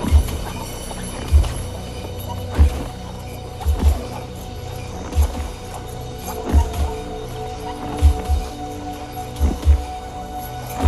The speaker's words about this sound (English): Like, the horse, there's a sleigh going down. There's a horse clomping kind of in slow motion, kicking up snow.